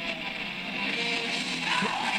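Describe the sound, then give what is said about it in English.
A dense wall of distorted noise rock blares continuously, with a strained, screamed vocal buried in the roar. Loud and harsh throughout, with no clear melody or break. “It just sounds like he's screaming.”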